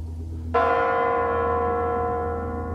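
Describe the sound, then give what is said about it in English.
A single heavy strike of a large Kremlin tower bell in Russia, ringing in the new millennium on December 31st, 1999; its deep ringing tone lingers and slowly fades over a low background rumble, with no one speaking. “As the bells in the Kremlin announce the new millennium in an even newer Russia.”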